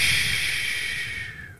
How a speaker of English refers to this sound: Now, you have to hold it for five, which is what you just did, and now you breathe out for five. But when you breathe out, be pronounced through your mouth.